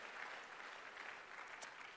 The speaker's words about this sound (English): Give a clap offering of praise to the Lord God. Amen.